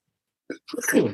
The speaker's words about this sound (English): Bless you.